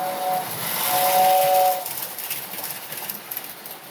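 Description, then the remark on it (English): A Lionel toy train set's steam whistle sounds twice, a short toot then a longer blast, over a steady airy hiss that continues after the whistle stops. No one speaks. “Yeah, I mean, 37 years old and I'm downstairs with a Lionel train set.”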